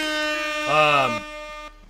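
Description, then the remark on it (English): A loud, sustained air horn blast with a rich, buzzing harmonic tone, holding for about a second and a half before cutting off abruptly. “Let's give this man an air horn.”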